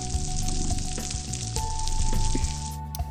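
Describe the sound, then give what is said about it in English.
Dense underwater crackling from snapping shrimp on a coral reef, a continuous fizzing and popping like frying oil, with sharper clicks scattered throughout and a few low thumps beneath, steady and fairly loud for the whole stretch. “but the coral reefs is actually one of the noisiest places in the ocean.”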